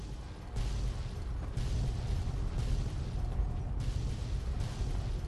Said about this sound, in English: Many, many, many explosions.